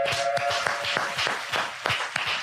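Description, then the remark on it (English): Steady hand clapping, roughly eight or nine sharp claps at an even, fairly quick pace, over a faint background hum and with no talking. “You clapped. There's a clap.”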